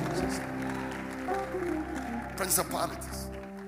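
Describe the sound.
An audience claps and shouts during a sermon in a dense wash of applause and raised voices, with a steady tonal hum underneath and a louder burst of cheering near the end.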